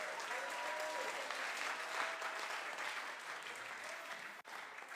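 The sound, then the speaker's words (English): Sustained applause from an audience, a dense, steady wash of many hands clapping at once, loud and even throughout with no voices standing out. “Your clapping does not look like the person who's taking the delivery of it.”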